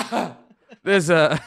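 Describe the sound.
A single rough, breathy cough bursts out close up, then trails into a brief voiced, throaty sound, like someone clearing their throat afterward.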